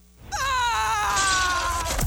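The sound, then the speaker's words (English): Marty, the cartoon zebra from Madagascar, lets out a loud, drawn-out scream, one strained, shrill held note lasting over a second, sliding slightly downward in pitch before cutting off abruptly, with no talking over it. “This is actually Marty from Madagascar screaming.”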